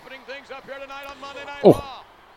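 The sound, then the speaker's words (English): A single heavy, booming thud as wrestler Barry Horwitz shoulder-barges Lex Luger in the ring corner, loud, cutting through continuous voices in the background. “Oh, shoulder barges by Barry Horwitz to Lex Luger in the corner.”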